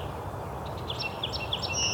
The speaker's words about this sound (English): The song sparrow here, of course. It's a brown-headed cowbird a second ago, too. Lots of ruby-crowned kinglet at the end there. But also a bald eagle. I did not expect that. Carolina wren. Very close up.